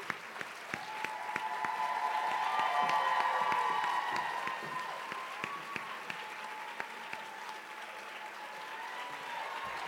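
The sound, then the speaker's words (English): A crowd applauds steadily for the full stretch as people are called up onto the stage, a dense wash of clapping with a few sharper individual claps standing out and some cheering voices rising in the middle before settling back. “No, can you just like sit, just take a moment and just clap for them forever.”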